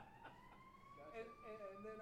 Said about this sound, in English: Not a Chicago interview unless we get some sirens in here.